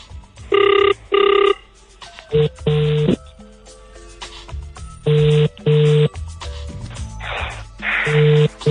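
A telephone ringback tone on an outgoing call, sounding in repeated paired bursts with short pauses between, clear, with faint background voices murmuring in the gaps.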